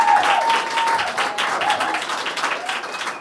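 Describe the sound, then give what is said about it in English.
A live audience at a 10th anniversary celebration bursts into loud, sustained applause after an on-stage chat, dense overlapping claps in a steady roar that holds strong throughout, with no speech. “I'd like, please, a massive round of applause, please, for Simon Tofield.”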